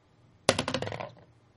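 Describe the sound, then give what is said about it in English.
Dice clatter onto a hard table with a sharp initial hit, then a quick series of rattling bounces that taper off within about half a second, fairly loud. “Do I need to roll?”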